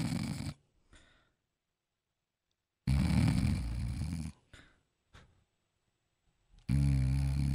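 snoring

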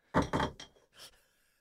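knuckles knocking on wood

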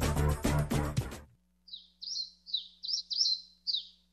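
birds chirping

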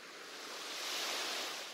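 ocean waves

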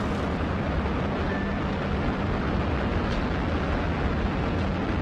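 rocket launch engine roar

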